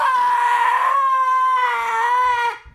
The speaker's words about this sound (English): He's going to scream as loud as he can. not into the mic, but off the mic. On the count of three. One, two, three.